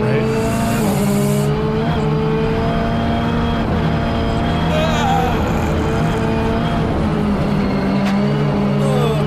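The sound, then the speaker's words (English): A fast car, a Hyundai X2, roars loudly and continuously as its tires squeal and skid, the engine pitch sliding and wavering throughout, intense like a car losing grip and sliding off the road. “I think he's going off, which I hate to say, because this looks like a really nice car.”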